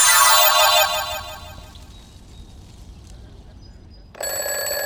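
An alarm clock's loud, jangling bell rings for about a second, then abruptly cuts off and fades into quiet; a few seconds later a bright, steady tonal sound starts up.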